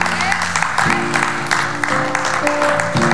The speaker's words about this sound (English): I mean, you know, it's better to do it His way. Amen. Give Him a good hand clap.